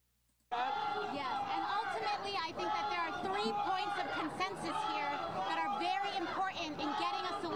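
A loud, dense crowd of many voices shouts and clamors at a press conference, bursting in after a brief silence and continuing without pause, with overlapping yells rising above the general din.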